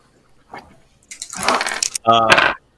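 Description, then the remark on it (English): Small hard objects clatter and rattle across a hard surface in two quick bursts, fairly loud: a D8 and percentile dice being rolled on a table for a critical injury. “That is a D8 and percentile dice, please.”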